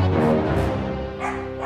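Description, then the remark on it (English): Dogs bark in a quick run of sharp, overlapping woofs and yips, steady in loudness throughout, with no talking over them. “You made the dogs bark.”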